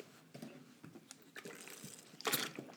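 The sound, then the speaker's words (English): A singer, stopping halfway through a song on a TV show, takes a quiet sip of water: soft wet mouth sounds and small gulps over a few seconds, ending in a brief breathy slurp, with no talking. “It started badly when the music wouldn't play, and he'd stop halfway through and drink some water.”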